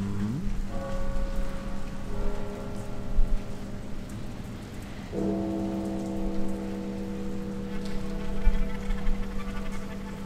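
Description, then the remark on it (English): Steady rain patters on a surface as a continuous hiss, with a low sustained droning tone beneath it that shifts pitch partway through. No one speaks. “There are so many wonderful things about rain, intrepid listeners.”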